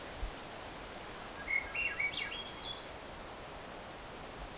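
A black-and-white warbler's thin, high-pitched song, a quick series of wiry notes rising and shifting, more rapid than usual, fairly faint over a steady background hiss, with no talking.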